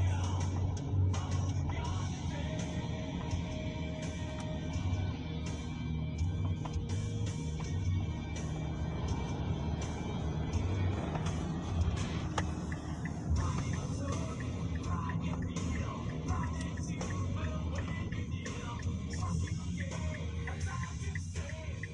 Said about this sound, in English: Lord Almighty, it's like Atlanta rush hour. The bumper to bumper to bumper traffic.